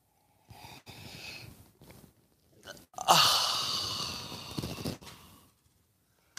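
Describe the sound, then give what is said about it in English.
Several short, airy sipping sounds lead into one long, loud slurp of hot coffee that trails off with a soft breathy finish. No one speaks. “And join me now for the unparalleled pleasure, the dopamine, hit of the day. The thing that makes everything better. Yeah. It's called the simultaneous sip.”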